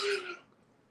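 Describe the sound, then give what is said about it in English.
A brief yawn: a breathy, voiced exhale with a slight moan that swells quickly and then trails off into quiet within a second. “So long, I had to yawn.”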